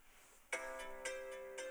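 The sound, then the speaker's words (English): A phone ringtone starts up after a brief quiet moment, playing bright, sustained electronic tones with new notes striking roughly every half second, loud and steady with no talking. “Is that someone's phone?”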